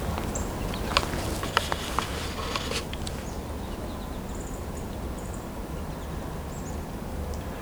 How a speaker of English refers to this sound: Several American goldfinches here. There's also downy woodpecker, red-belly woodpecker, Carolina wren.